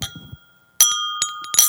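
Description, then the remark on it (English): Wine glasses clink together in a toast, several bright strikes in quick succession, each leaving a clear ringing tone that lingers, after a brief soft rustle. “That was so bad, it gave me time to actually reach for stemware.”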